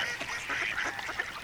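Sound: mallard ducks quacking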